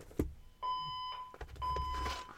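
Two loud electronic beeps from a fire alarm, each about half a second long, sounding in quick succession, with a sharp click just before them and low rumble underneath.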